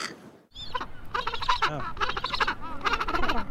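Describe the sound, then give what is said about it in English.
Penguin calls: a colony's harsh, nasal brays and squawks overlapping loudly and almost continuously after a brief quiet start, with no one talking. “It's a penguin call.”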